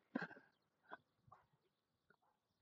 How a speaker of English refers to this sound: That's a oh, puppy. The adorable. He's gonna be a big dog, though. That's gonna be one of those mastiffs.